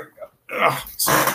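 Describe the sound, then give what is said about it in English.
A dog growls in two short, rough bursts, the second following after a brief pause, with no talking over it. “Dog's being difficult again.”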